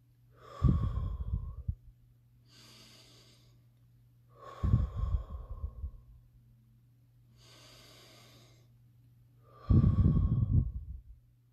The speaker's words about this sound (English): Take 3 to 10 deep breaths and choose love.